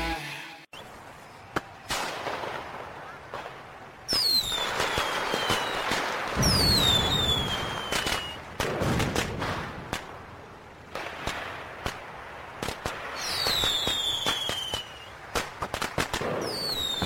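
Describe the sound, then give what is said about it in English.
Fireworks burst repeatedly, with sharp cracks, whistling streaks that glide downward, and crackling sparkle, a busy, loud display lasting throughout with no talking. “those are our fireworks.”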